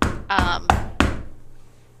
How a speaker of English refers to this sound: Moment of panic. He'll knock a little more urgently this time.